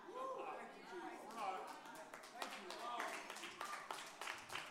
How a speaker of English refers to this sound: I'll take my golf clap as a sign that I'm preaching pretty good right now.